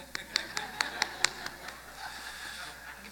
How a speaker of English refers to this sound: How many know what the golf clap is? It's like, it's a courtesy clap.